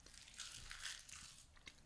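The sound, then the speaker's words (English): Crisp crunching of a snack being chewed, with several irregular crackly bites over a couple of seconds and no talking. “Chewing.”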